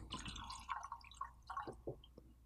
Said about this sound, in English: Sorry, I didn't mean to interrupt you with the bottle pour. Gave me a chance to take a sip.